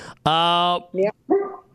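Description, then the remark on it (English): A dog barks three times, loud and sharp: the first a long, drawn-out yowling bark, then a short yap and a final rough bark. “Besides the dogs, I love the dogs.”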